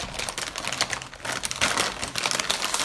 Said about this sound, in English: Opening a bag of chips. Yes. All right. All right. Nice job. Nice rustling job.